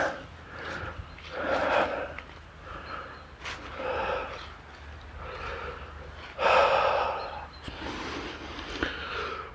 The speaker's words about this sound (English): Oh, just breathing a little bit of that morning air.